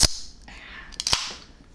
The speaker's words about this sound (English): Gonna give you a little bit of Foley here on opening this can.